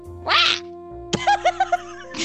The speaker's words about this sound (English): T5 squawked.